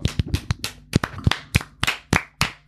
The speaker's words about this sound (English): It's a celebration. Can we start today? Off with some clapping? Clapping? I can.